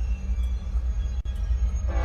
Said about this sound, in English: you always have to wait until the train goes by and you can still see what's going on before you drive ahead